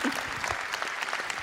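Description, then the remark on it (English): An audience claps in a steady round of applause, dense overlapping hand claps forming a bright, even wash of sound with no voices over it. “Can you give her a round of applause for that?”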